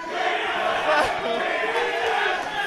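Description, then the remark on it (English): A large crowd at a live show shouts and chants for TSM and Liquid (TL), a loud, dense wash of many voices with rhythmic rising cheers layered over a constant roar. “So, TSM and TL shouts in the house.”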